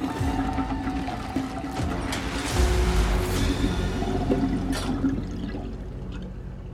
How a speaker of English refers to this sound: Making a surgical effort, he manages to unblock the pipe, and slowly, the bathtub begins to drain. The cadaverous fauna descends, escaping down the drain like a wounded animal fleeing towards the river.